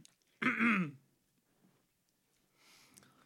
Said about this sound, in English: Oh, hold on. Let me clear my throat.